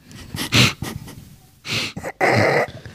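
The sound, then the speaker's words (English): A person imitates a dog sniffing with a few sharp, breathy snuffles through the nose, in quick bursts separated by short pauses, and no speech. “No, dog sniff like that too.”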